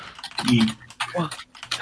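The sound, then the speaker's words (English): Quick clicking of keys on a computer keyboard, tapping away in short bursts while voices talk and murmur over it. “Secret typings. Secret typing man.”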